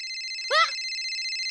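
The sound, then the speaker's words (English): A telephone rings with a steady, bright electronic tone that carries through the whole moment, briefly interrupted by a short vocal sound in the middle. “They've given me one phone call.”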